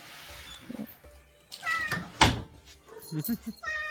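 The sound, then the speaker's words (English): Several cats meow in quick succession, all at once, fairly loud, with a sharp thud partway through and some quiet background voices. “The cats at once. All the cats.”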